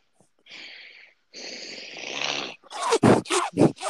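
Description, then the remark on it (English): Heavy, breathy rushes of air right up against the microphone, two long loud breaths in a row, followed by several short, choppy voiced bursts. “Who is breathing really heavily?”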